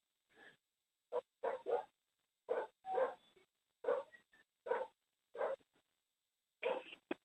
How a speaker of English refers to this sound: The dog has an opinion. Can anyone translate? Can anyone translate bark?